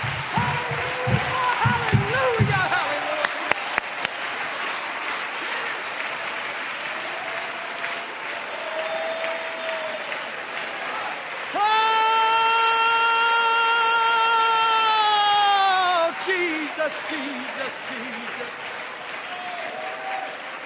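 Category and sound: crowd, audience clapping and applauding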